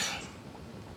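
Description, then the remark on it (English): A single quiet sneeze, a sharp hissy burst at the start that fades quickly into faint background noise. No one speaks. “Bless you. Sorry.”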